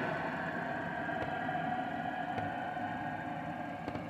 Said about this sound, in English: Here we go. Here goes a loud plane while I'm doing a podcast.